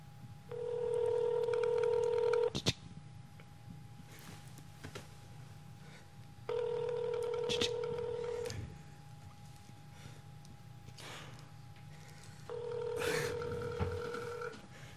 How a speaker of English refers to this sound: Come on, come on, answer the phone. I love you, baby. That's the phone. That's the phone. I know what you're doing. Answer the phone.